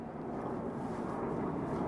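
A steady, droning roar of an airplane flying overhead, a thick low-to-mid rumble holding an even loudness for about two seconds with no voices.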